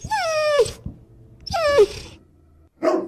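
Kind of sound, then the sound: animal, dog whining or howling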